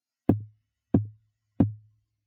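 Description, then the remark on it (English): Three firm, evenly spaced knocks on a white-painted hotel room door on the second floor at midnight, each a sharp thud with a low resonant body, loud against silence. “At midnight, Doris is woken by the sound of knocking on her door.”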